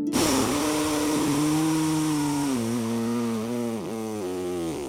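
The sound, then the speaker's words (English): A voice imitates a long fart with one continuous, buzzy, raspberry-like drone lasting about five seconds. It wavers and dips in pitch toward the end, stays fairly loud throughout, and has no talking. “It was the longest, most glorious fart I've ever had. And it didn't smell at all. It went like this.”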